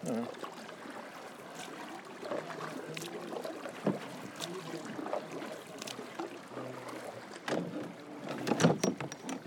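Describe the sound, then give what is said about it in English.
Paddles dip and swish through water in an uneven rhythm as a small boat is paddled, with small splashes and trickling, while soft wind and faint voices sit in the background. “You want me to keep us paddling, or?”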